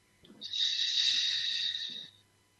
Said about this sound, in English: Hold it, one, two, three, and out through your mouth as if you're breathing through a straw.